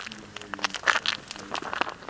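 Slow, careful, sneaky footsteps crunch softly across gravel, a handful of quiet gritty steps with small crackling scuffs between them and no voices.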